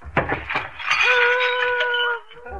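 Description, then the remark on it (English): A loud crash of breaking glass, like a big cut glass punch bowl shattering, with a bright clatter followed by a sustained ringing tone that fades after about a second. “I don't know, unless it was that big cut glass punch bowl that lady checked about a year ago.”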